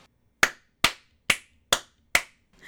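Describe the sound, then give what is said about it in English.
Five sharp hand claps in a steady, even rhythm, made to mark the beginning of a recording, each a loud crisp snap that fades quickly, with near-silence between them and no talking. “So I'm just going to clap to mark the beginning of the recording.”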